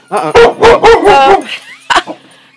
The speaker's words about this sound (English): sorry, y'all. Somebody came in the door. Dogs freaked out.